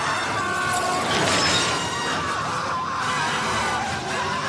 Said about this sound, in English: Hold on. Ambulance crashes, blows up right here. Right here. Perfect.